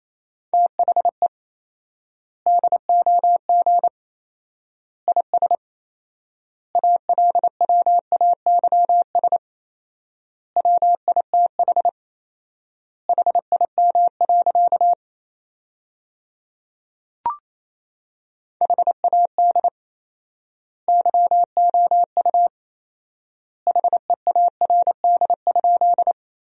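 Morse code at about 28 words per minute with fourfold word spacing, sending sentences built from the top 400 words: a single steady mid-pitched tone keyed in quick dots and dashes, grouped into words separated by long silent gaps, with one faint click midway.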